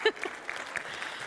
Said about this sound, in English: If one person claps, we all have to clap.